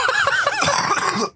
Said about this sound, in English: You good? Yeah, I'm fine. So you cough when you're lying?